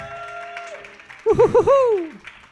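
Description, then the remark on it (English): Audience applause bursts up midway, loud and brief, mixed with rising and falling whoops and hoots from the crowd before fading out. “It's a bizarre state we're in when we're like, he didn't puke and he didn't have a hangover and that gets the biggest applause.”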